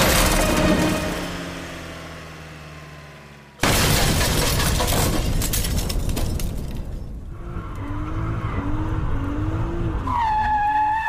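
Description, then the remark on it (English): Sophie's car engine roars and fades as it goes over the cliffs at the bluffs on the edge of town, then a sudden violent crash of crunching metal and shattering debris, followed by a long rumbling aftermath with faint wavering tones as the car becomes a flaming wreck. “The cliffs are right there. She's going over.”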